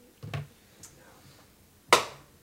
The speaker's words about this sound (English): Boo. That clap offends me.